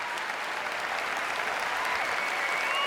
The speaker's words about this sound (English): So thank you. I mean, again, that let's cue up that round of applause sound effects.